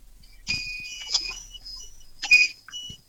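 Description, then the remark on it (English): High-pitched electronic start-up chimes from a truck being started sound in two bursts of steady, piercing tones, the second shorter and louder, followed by a few faint blips, with no voices. “He's going to start the truck up, he said. Oh. Yeah, so, it'll do the chimes and might come through a bit high pitch.”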